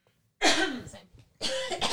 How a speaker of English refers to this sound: Hold on, I'm sorry. I keep needing to cough.